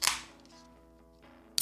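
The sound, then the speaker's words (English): A not-very-cold drink being opened with a sharp, loud pop, then a stretch of quiet low hum, and a second abrupt crack right at the end. No one speaks. “Ooh, that's a good pop.”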